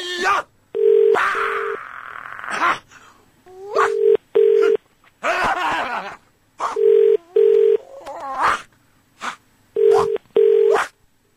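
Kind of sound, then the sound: signal or alarm, telephone ringing tone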